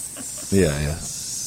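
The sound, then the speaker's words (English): A voice makes a gentle, drawn-out snake-like hiss, soft and steady for the whole moment, with a brief voiced hum rising in the middle. “Can we go back to the snake for a second?”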